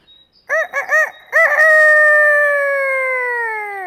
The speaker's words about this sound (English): Do you know what animal is that? Right! Chickens!